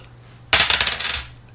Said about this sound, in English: Do I really have to roll this 7 times? I'll keep track of the dice rolls.